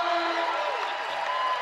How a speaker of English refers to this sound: And the crowd showing their appreciation.